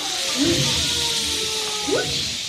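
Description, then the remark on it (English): An audience imitates a gust of wind as a sound effect shown on a screen, blowing a steady breathy hiss with two rising, whooping swells that come and go over a couple of seconds. “So up here, the first one is a gust of wind. Can you make a gust of wind?”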